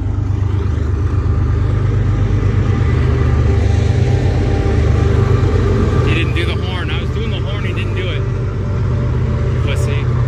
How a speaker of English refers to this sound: That's a full-on freight train right there. That's a full... I said that's a full-on freight freaking train right there. No, they gotta go slow like that in these downtown parts. The overpass.